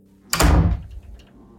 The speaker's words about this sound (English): Forgetting that both of my brothers aren't home, I go up the stairs, and I see someone run into my brother's room and slam the door.